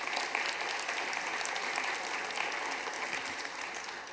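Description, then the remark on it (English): An audience applauds steadily for about four seconds, a dense, even wash of many hands clapping with no voices rising above it, applauding news that Westside will be the first to take part in an Italian church plant. “And it is absolutely, it's worth clapping about.”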